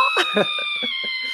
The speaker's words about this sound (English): That's the longest scream ever.